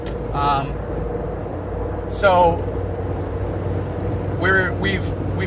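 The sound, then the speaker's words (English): A bus pulls out into traffic: a steady, low engine rumble with road noise throughout, broken by three brief voice-like bursts. “Go ahead, bus. There you go.”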